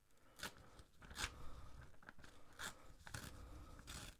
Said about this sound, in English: Tear along there, and then you end up with your perfectly square piece of paper.